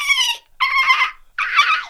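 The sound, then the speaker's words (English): A woman imitates a dolphin with three loud, high-pitched squealing bursts, the last two chattering and buzzy, separated by brief pauses. “I love her dolphin impression.”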